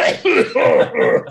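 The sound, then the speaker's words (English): A short fit of coughing, four harsh bursts in quick succession, loud, with no talking around them. “Justin, the cough button.”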